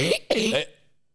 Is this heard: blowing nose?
yes